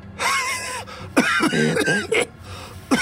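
A man coughs hard into his shoulder, a wet cough erupting in several rough, throaty bursts, with a final short hack after a brief pause; no one speaks.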